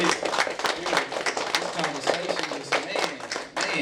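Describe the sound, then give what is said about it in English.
At the close of an evening event, a crowd applauds for the brothers with dense, steady hand clapping that runs the whole few seconds, loud and busy, with scattered voices mixed into the clatter. “Y'all, let's give these brothers a hand clap, man.”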